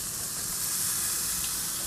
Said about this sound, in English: As you hear the sizzle again, as I flip some chicken.